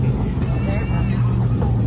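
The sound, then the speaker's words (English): An airplane's belly scrapes along a runway: a loud, steady grinding rumble with harsh scraping texture that lasts the whole moment, a muffled voice faintly beneath the noise. “And he's holding it off, gently lowering it to the runway. Oh, no. Now you hear the scraping right there.”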